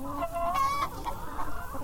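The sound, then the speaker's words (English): Several chickens, a flock with two roosters and breeds such as Golden Comet, Barred Rock and Leghorn, cluck and chatter in a busy overlapping flock sound with a few higher, drawn-out calls standing out over steady background noise. “Look, he's got his little flock.”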